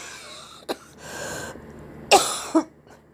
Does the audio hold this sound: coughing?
yes